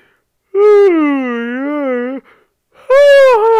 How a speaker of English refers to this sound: Oh my god, big yawn, holy shit.